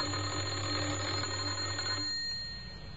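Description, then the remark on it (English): A doorbell at a house in Oxford, pressed by a man, rings with a steady, buzzing electric tone for about two seconds, then cuts off and leaves a faint fading hum. No one speaks. “He had a worried expression on his face as he walked up the few steps and pressed the doorbell. Again he tried.”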